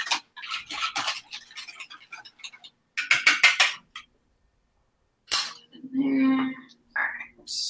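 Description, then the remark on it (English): Scraping and clinking against a bowl in quick repeated strokes, then a sharp clatter and a short wet pouring sound as egg yolk mixture is poured back into milk and cream for ice cream, a little spilled, with brief pauses between the bursts. “Pouring the yolk mixture back in, scraping my bowl, spilled a little.”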